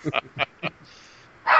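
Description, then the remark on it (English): A dog named Mogwai barks in a quick string of short, sharp yaps, pauses briefly, then lets out one louder, longer bark at the end, with no talking. “Oh, sorry about that. Walker dogs. Actually, that's a gremlin dog.”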